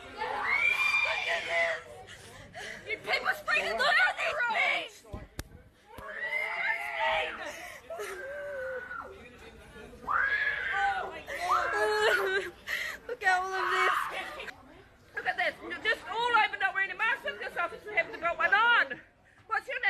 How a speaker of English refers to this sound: This is just every day in Australia now. Screaming, crying women and children being brutalized by the state. Paper sprayed a 12-year-old.